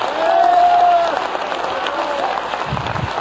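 A church audience claps hands during a sermon in a dense, steady wash of applause for a few seconds, with a brief high sustained tone like a shout or whoop rising over it early on.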